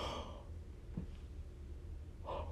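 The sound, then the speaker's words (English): A small, delicate yawn, a soft breathy exhale that trails off, then a faint intake of breath near the end. It is quiet, with no talking. “And it was so cute and delicate too when I did my little yawn, like, meow.”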